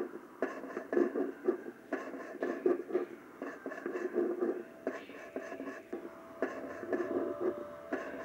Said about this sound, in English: Now, listen back to it and tell me that that's not what it is. Or something similar. I just call it the scraping noises.